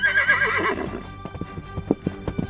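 A horse gives a loud, wavering whinny that trails off, followed by a steady series of hoofbeats clip-clopping at a relaxed walking rhythm.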